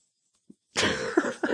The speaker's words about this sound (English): Sorry, I'm fighting a cold. I apologize for coughing.